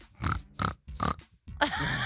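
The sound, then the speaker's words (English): A person imitates a pig as a 'warning pig' noise, voicing three quick, evenly spaced oinks, then ending with a longer, raspy snort-like squeal. “If you hear a pig noise on this show, it's like this.”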